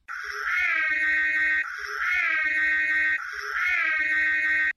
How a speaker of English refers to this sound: So we're into spoilers. we'll sound the klaxon. We're into spoilers.